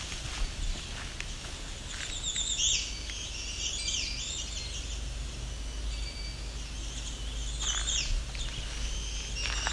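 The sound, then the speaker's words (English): Several black-throated green warblers sing high, buzzy phrases, with a few bright bursts standing out over a steady low outdoor rumble and faint rustling steps. “As you can hear, this place is loaded with black-throated green warblers.”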